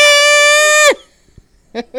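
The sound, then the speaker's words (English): A loud, sustained goat bleat, almost like a scream, holding one pitch before sliding down abruptly, then a short pause and two brief, quieter bleats in quick succession. “I'm glad you said I'm glad you said goat noise.”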